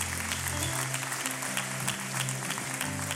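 A church audience applauds its longtime pastor couple steadily, dense crowd clapping filling the whole stretch at an even loudness, with low sustained organ or keyboard tones shifting underneath.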